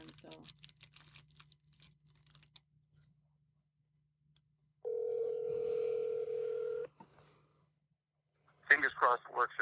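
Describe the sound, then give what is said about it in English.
Faint tapping clicks, then a loud, steady telephone tone holds for about two seconds as a cell phone call plays through a speakerphone into a mic, cut off as a voice begins talking. “Well, I'm calling you actually through my cell phone, but then you're going through the mic.”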